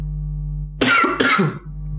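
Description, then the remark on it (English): Two quick, harsh coughs in close succession, loud, over a steady low background hum, with no talking, from a dry throat caused by talking. “I don't know why I'm coughing so much tonight.”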